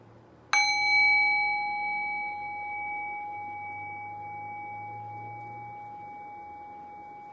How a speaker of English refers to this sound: Now ring the bell one more time. Allow the decay of the bell to guide your thinking mind into silence.